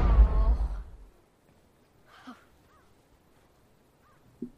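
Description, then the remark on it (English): A deep, heavy rumble of thunder from a huge storm booms at the start and fades over about a second, then near-silence with a couple of faint, short caw-like bird calls, at a campsite in the woods. “What kind of storm was that? It's a big one.”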